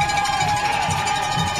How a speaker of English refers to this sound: Oakland fans cheering on their D.